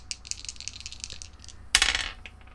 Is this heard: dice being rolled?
yes